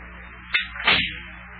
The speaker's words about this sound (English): I'll just close the front door here so the cold air don't get into Big John's house.